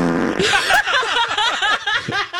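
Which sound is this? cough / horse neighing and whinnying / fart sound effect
fart sound effect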